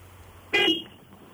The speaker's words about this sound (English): Right, do us a favour and give us a quick blast on your horn. Okay, you ready? Yeah, I'm ready. That sounds like a little girly car to me.